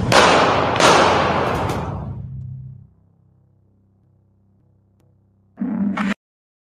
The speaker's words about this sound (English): I said that was scary, y'all. Okay. Gunshots.